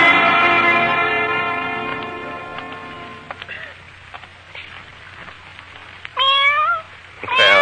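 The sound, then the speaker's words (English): A cat in a dark doorway on a street meows: one long, drawn-out wail at the start, then a quiet pause with faint background noise before two shorter, sharper meows near the end. “What's the matter, cat?”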